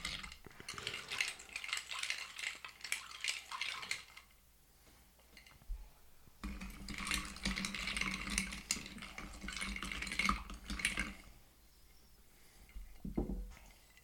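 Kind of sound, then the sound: food or drink, stirring a cocktail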